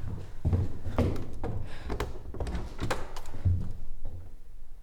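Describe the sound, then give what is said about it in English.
A hidden door swings open behind a bookcase: a steady run of heavy wooden clunks, scrapes and low rumbling thuds as the mechanism shifts, with no voices. “there's a hidden door.”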